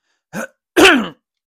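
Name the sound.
throat clearing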